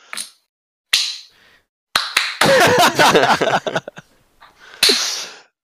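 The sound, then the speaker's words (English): A few scattered hand claps, then a short burst of quick, overlapping clapping from several people for about a second, trailing off into a couple of final claps. No talking. “Can we give some claps?”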